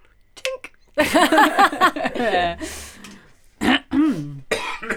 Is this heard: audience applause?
no